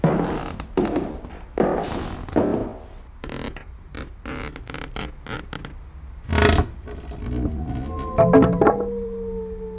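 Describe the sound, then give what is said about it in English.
A floorboard being pried up: a run of wooden knocks, scrapes and sharp cracks, ending in a drawn-out, groaning creak. No one speaks. “Floor boys, man, and the floor boys over there, man, a creaky one.”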